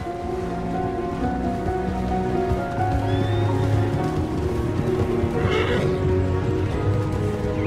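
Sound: horse neighing and whinnying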